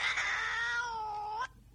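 One long, drawn-out, loud cat meow, holding a steady wailing tone for over a second before cutting off abruptly. No one talks.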